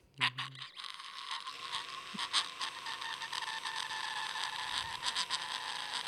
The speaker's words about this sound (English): Let's open up this big, creaky old door.